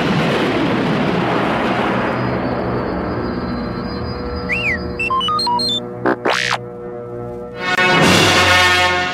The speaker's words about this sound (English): Closing his eyes, Luke concentrated on the target and fired his proton torpedoes. They flew straight and true into the exhaust port. As Luke lifted away, the Death Star exploded in a dazzling ball of flame.